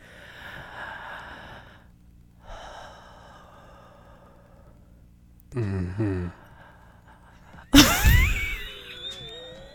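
Two long, slow, deep breaths, one in and one out, followed by a couple of grunting, snort-like bursts and a sudden loud, distorted blast of air.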